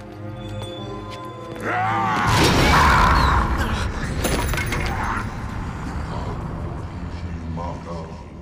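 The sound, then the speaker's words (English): Gimli's axe strikes the ring to destroy it and shatters with a loud, ringing crash, throwing Gimli back, followed by scattering metallic debris, set against a sustained musical backdrop. “But when Gimli attempts to do so with his axe shatters and Gimli is thrown back.”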